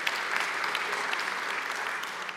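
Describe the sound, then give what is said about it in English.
An audience applauds steadily, a dense wash of many hands clapping at an even, moderate loudness throughout, with no voices rising above it. “So, yeah, you can clap for that.”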